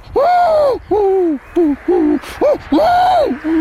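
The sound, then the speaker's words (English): A person's voice imitates an angry pigeon's agitated cooing: about seven throaty, rising-and-falling coos in a quick, uneven string, some long and drawn out, others short and clipped, fairly loud. “So if a pigeon was angry, would it go...”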